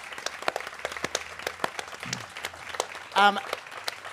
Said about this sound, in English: In fact, keep that applause going and make it a rowdy Adelaide applause for our three speakers today.